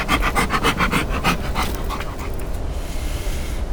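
A dog, Buzz, pants after playing fetch, in quick, rhythmic breathy bursts, about a dozen in a row, then the huffing trails off into a softer, steady breathing hiss. No one speaks.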